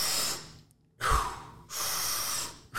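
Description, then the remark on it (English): A powerful inhale through the mouth taken in three rushing stages (stomach, chest, head), each a loud, breathy surge of air separated by short pauses, with no talking. “You're trying to bring in as much air as possible. So breathing through the mouth, it's probably not going to sound really good.”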